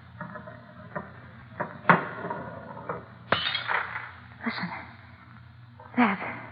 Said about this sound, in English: Nothing, darling. The glass just rolled off and broke. For a minute, I didn't know what it was.